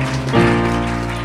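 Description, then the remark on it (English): An audience bursts into sustained hand clapping and shouting in praise to the Lord, a dense, steady wash of applause with voices rising over a held musical tone. “Give a hand clap to the Lord, a shout.”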